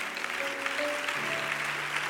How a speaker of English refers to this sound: One more time, clap your hands.